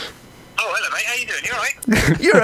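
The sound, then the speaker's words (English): A telephone call rings with a steady electronic tone lasting about a second, while voices talk over it, followed by more speech. “It's ringing.”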